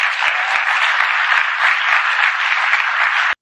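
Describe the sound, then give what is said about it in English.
A burst of steady, dense applause from many hands, holding an even level for about three seconds before cutting off abruptly. No one speaks over it. “And yeah, no applause necessary.”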